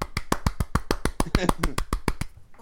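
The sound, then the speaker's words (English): A quick, steady run of about fifteen sharp hand claps at an even rhythm, with a brief murmur of voices underneath partway through before the clapping stops. “I am actually clapping my hands.”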